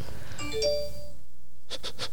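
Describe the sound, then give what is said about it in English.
A home alarm system chime rings out in bright, layered tones that fade over about a second, followed by three quick rhythmic pulses. No one speaks. “It's my home Turn alarm. Turn that off.”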